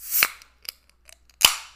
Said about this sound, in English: Also, I have to open my Diet Coke and you're going to hear it. I'm so ASMR, sorry to the pod. ASMR. Should I do it in front of the mic?